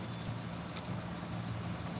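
A school bus in the film Forrest Gump idles with a steady, low rumble that fills the whole moment, constant, with a faint hiss of road noise layered on top and no voices.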